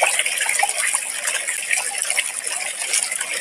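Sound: water running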